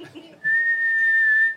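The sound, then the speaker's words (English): A person whistles one long, loud, steady high note for about a second, imitating a lifeguard's whistle blast at a swimming pool, after a brief murmur of voice. “I like swimming, but sometimes the swimming pool will have too many rules and the lifeguard will be really intense with their whistle.”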